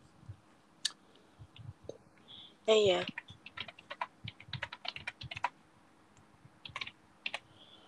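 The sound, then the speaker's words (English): Rapid, irregular clicks of typing on a wireless keyboard, fairly crisp, with a brief louder clatter near the start and a low background hum throughout. “I don't want my laptop that close to me, so I've actually got, like, a wireless mouse and keyboard, which I'm using.”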